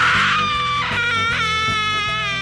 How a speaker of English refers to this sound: I don't normally scream like that, but this was huge.